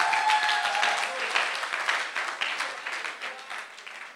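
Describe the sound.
An audience claps for Joseph in a dense, steady wash of applause that holds for several seconds and tapers slightly toward the end, with faint voices mixed in.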